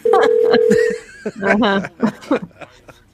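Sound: telephone keypad dialing tones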